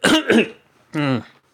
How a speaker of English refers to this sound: It's a note to self, edit out that cough. Don't cough straight into the microphone. You'll deafen the listener. At least have the decency to turn your head. I didn't turn my head because I was busy looking out the window in front of me.